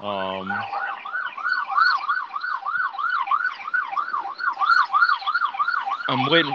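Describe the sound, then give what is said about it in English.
A loud emergency vehicle siren, passing by in the neighborhood, yelps in a fast, steady warble for several seconds, bracketed by brief, deep horn blasts at the start and end; no one speaks. “I'm waiting for the sirens to go by.”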